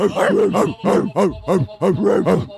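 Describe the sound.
A person imitates a German Shepherd barking, letting out a quick, steady string of about eight deep, gruff woofs, loud with no other sounds around them.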